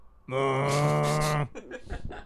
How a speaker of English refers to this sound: That is one constipated cow.